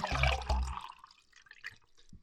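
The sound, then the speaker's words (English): Someone drinking fresh water: a loud, splashy burst of liquid at first, then quieter scattered drips and trickles that fade away. “Well, my mama said that good fresh water, good fresh H2O is really good for you. So that's why I'm drinking tonight.”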